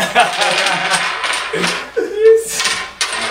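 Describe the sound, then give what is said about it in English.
Game pieces are shuffled across a tabletop, a steady clatter of hard tiles clicking and sliding for several seconds, with brief vocal sounds and murmurs mixed in. “I shuffled.”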